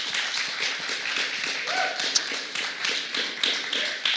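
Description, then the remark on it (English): A crowd applauds steadily, dense overlapping claps forming a continuous wash of sound that holds fairly loud and even from start to finish. “Let's give him another round of applause.”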